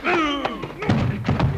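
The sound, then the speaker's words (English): A voice cries out, followed by a few heavy, dull thuds of a chair striking a person, landing loud in quick, uneven succession. “You got to hit me with a chair, will you?”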